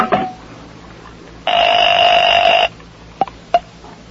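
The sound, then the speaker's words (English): A telephone call being placed to Mr. Johnson: a brief tone, then a steady electronic ring lasting just over a second, followed by two sharp handset clicks, fairly loud, with no talking. “Hold on a moment. I talk to Mr. Johnson on this phone.”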